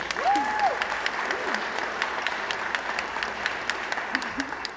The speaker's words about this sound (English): Thank you all for being here, taking time out of your schedules to celebrate our first graduating cohort of 2022. Clap for them real quick.